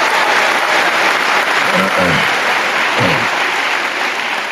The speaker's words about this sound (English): Drop a round of applause for Jameis.